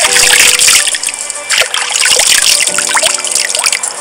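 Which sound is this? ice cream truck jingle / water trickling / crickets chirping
water trickling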